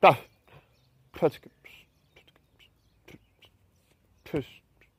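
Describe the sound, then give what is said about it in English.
A bird gives three sharp, sweeping tweets about a second or more apart, loud, with faint soft chirps and rustling in the gaps between them. “Stop tweeting.”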